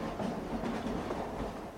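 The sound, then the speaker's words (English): A train rolls steadily along railroad tracks, its continuous low rumble joined by a faint clickety-clack from the wheels, even in loudness with no voices. “Several decades prior, in 1870, the first inception of the Norfolk Southern Railroad had been established, and by 1880, this rail line began connecting the city of Norfolk, Virginia, to Edenton, North Carolina, passing directly through Elizabeth City”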